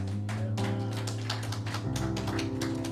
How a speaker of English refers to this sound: Amen. Amen. Oh, a louder clap offering.